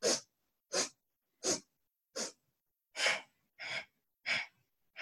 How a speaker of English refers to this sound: And then exhale in 4 equal parts, sniffs. So inhale 4 equal parts, exhale. And now on each of the sniffs, try to move the navel point.